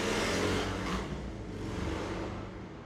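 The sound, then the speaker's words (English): A loud modded car's engine roars in Jersey with a deep, rumbling growl, peaking early and then easing slightly as it seems to move past. No voices are heard. “Yo, welcome to Jersey, where like everybody has a modded car for no reason.”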